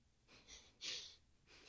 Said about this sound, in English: And it simply says breathing.